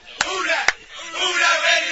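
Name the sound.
crowd cheering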